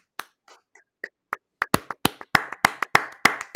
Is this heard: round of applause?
yes